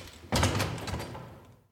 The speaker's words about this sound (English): Wow. What's all that on the floor? Whatever it is, it was stopping the door from opening.